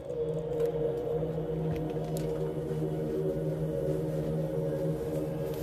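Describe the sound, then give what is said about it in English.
A sustained, droning Tibetan healing chant with deep, steady low tones and layered harmonic overtones, holding at an even volume throughout with no talking over it. “So hopefully you're listening to the sounds of this Tibetan healing chant.”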